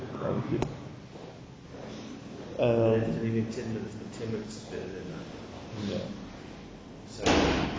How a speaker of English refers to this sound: Are you closing the door? Thank you.